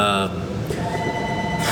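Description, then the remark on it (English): A telephone rings at a business, CrossFit Stephenville, in short bursts of bright, buzzy electronic tone at the start and end, with a low steady hum and murmuring voices between the rings. “Sorry, the phone's ringing, guys.”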